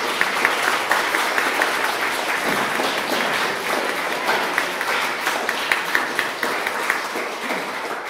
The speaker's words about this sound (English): So let's give these folk a round of applause.